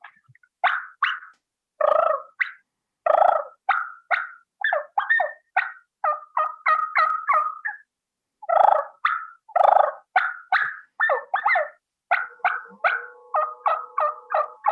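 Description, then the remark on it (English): Soft turkey clucks and purrs made on a mouth call, a steady run of short yelping notes in quick bursts with brief pauses, and no talking. “this can be on a mouth call, whatever you're most proficient at being soft and quiet”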